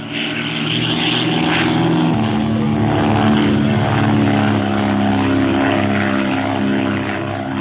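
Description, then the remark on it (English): A propeller plane roars overhead, its droning engine loud and steady throughout with a throbbing low hum and buzzing harmonics, no voices present. “Perhaps lunatics are flying the plane.”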